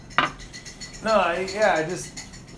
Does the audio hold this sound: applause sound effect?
no